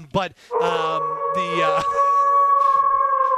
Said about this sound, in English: My Husky's losing his mind tonight with the Wolf calls.